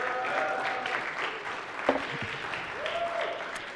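A church crowd claps steadily throughout, welcoming a man invited up on behalf of the church singles, a dense wash of applause with a few faint whistles or cheers rising above it and a sharp thump near the middle.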